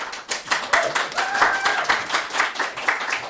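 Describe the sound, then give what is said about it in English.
An audience breaks into applause during the introduction of graphic novelist and comics laureate Hannah Berry, a dense, steady wash of many hands clapping, with a faint voice or two rising briefly above it. “Save your clap. We'll get to the four, and then you clap after that.”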